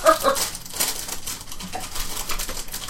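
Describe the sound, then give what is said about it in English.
Small loose pieces rattle inside a product as it is shaken, a fairly loud run of rapid, irregular clattering bursts with no one talking. “So this is requisite rattly bits.”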